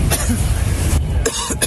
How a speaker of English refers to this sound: These gray firefighters take cover inside a vehicle as the winds whip up the inferno. You see the flames moving closer. Inside the vehicle, the men can be heard coughing.